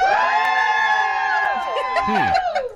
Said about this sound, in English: Okay, so it's Team Tapatio or Team Cholula. So if you think we're having a boy, cheer. Oh, boy heavy over here. Okay, if you think I'm having a girl, cheer.